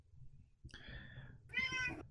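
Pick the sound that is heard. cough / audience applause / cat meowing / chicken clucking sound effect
cat meowing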